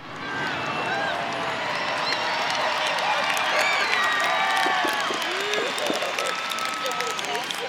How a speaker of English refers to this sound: Applause. Massive applause. My God. Right?